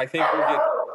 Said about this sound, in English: I agree with that dog there.